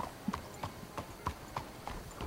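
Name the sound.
horse hooves clip-clopping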